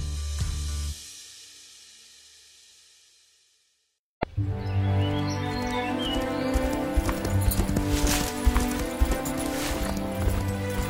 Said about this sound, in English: is that a new horse? Yes, his name is Olivier. Is he not splendid? A present from my father.